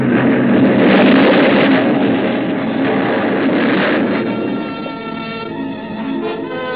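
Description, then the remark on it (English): A loud, rumbling explosion of a ship that has struck a reef in fog swells within the first second, then rolls on as a dense, roaring wash of noise that slowly eases over several seconds, with no voices present. “The force of the explosion hurled me into the blood-warm waters.”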